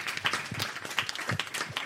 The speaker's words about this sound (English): Can we have a round of applause for all of you, please?